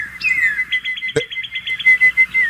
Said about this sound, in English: That's a cardinal. No, they don't do that. I'm looking right at the cardinal making the noise.